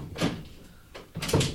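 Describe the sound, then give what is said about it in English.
A door is opened as someone leaves, giving a short series of clunks and rattles: one knock, a brief pause, then a louder rustling thump as it swings, and the door is left open. No one speaks. “You didn't close the door.”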